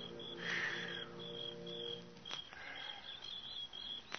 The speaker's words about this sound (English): The sound of birds and crickets seemed loud in my ears as we stood there, looking at each other, saying nothing.